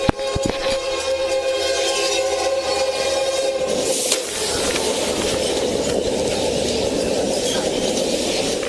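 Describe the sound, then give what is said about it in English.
A police officer's body camera recording at a railroad crossing as the crossing arms come down: a steady metallic tone rings over a continuous rumble, then about halfway through a loud, rushing roar of the train takes over and holds to the end. No one speaks. “She was on patrol and saw the railroad crossing arms coming down.”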